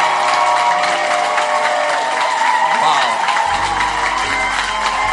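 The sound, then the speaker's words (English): A large audience claps and cheers in a steady, dense wash of applause lasting the whole stretch, loud, with a voice calling out briefly over it. “Clap and show some appreciation that you are impressed.”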